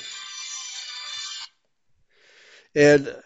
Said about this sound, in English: Sorry, my phone just went off. I have to cancel that.